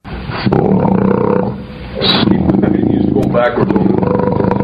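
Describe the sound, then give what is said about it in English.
A loud, roar-like synthetic note, a singer's note played back on a computer, rumbles continuously for several seconds, low and growling with a rough edge, while people talk over it. “sounds like a roar. Sounds like a bloody roar, that does.”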